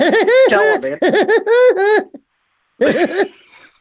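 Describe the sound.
A voice imitates the Woody Woodpecker laugh: rapid, high-pitched staccato bursts in a bouncing rhythm, pausing briefly before a shorter final burst that trails off.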